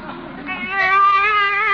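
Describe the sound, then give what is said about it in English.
A baby in a car cries in one loud, drawn-out wail that swells after a brief softer start and holds steady to the end, with no talking over it. “A baby!”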